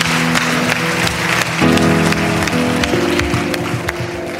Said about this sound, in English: Can we give these 5 individuals that raised their hand a huge round of applause? Yeah.